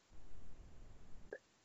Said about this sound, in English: And I'm sorry, I just coughed into all of your ears.